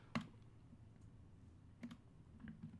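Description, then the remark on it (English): A few sharp, dry computer clicks and keyboard taps, spaced irregularly over a low steady background hum, fairly quiet, with no one speaking. “I was like frantically clicking back on my browser to get back to the pay-per-view that we were on.”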